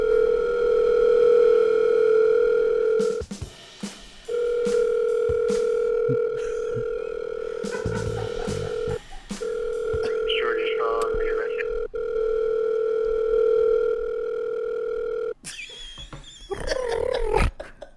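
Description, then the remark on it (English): A steady electronic phone tone drones for several seconds at a time, with brief breaks, as a call rings out to a landline and a cell phone at once; faint voices murmur briefly underneath near the end. “I'm calling all their landline and their cell phone at once.”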